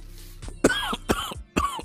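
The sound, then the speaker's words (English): A person deliberately coughs three times in a steady rhythm, each harsh burst close and fairly loud, with a low hum running underneath; the coughs sound performed as an imitation rather than natural. “I'm trying to be coughing like this.”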